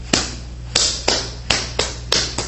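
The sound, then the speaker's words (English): A series of sharp taps on a glass window pane on a stormy, windy, snowy Christmas Eve night, about six or seven knocks in a slightly uneven rhythm, each ringing briefly before the next, with no voices. “And pretty soon, against the pane glass window, there was...”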